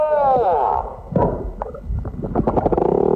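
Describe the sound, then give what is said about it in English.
A male humpback whale sings for a mate in a series of long, sweeping moans and rising-falling whoops, with rich overtones and a few short grunting pulses, loud throughout. “Humpback whale singing his heart out for a mate.”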